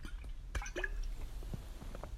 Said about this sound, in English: and I thought, well, I'm gonna have to have a drink of water here. Just excuse me for a second, I've got a scratchy throat.